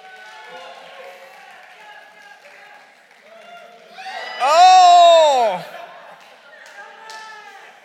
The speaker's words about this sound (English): So give it up for them. I want to hear like a noise, applause as they're going. Ready? Here we go.